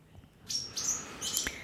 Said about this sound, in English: And the little welcome swallows come to join me in saying that to you.